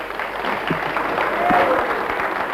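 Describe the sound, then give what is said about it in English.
An audience at a religious meeting claps for a man who has been called up to the front, a dense patter of many hands at a fairly even, moderate loudness for a couple of seconds, with faint crowd murmur underneath. “Give him a clap.”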